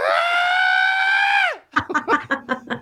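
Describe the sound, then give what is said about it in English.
A person lets out a long, loud, steady high-pitched screech imitating a hummingbird's scream, which drops off sharply at the end and gives way to a quick run of choppy, laughing bursts. “And surprisingly, a hummingbird screams very surprisingly loud.”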